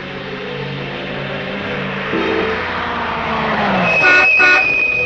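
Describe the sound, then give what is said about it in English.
A car horn honks twice in quick succession near the end, loud, over a steady engine rumble and road noise. No one speaks. “Get this car out of here!”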